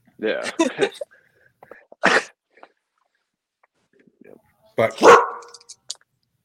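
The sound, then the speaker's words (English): A dog named Bella, a mixed-breed dog from the local Humane Society, barks in a few separate, sharp bursts spread over several seconds, fairly loud, with short gaps of near silence between them. “She's a mixed dog we got from the local Humane Society a couple years ago.”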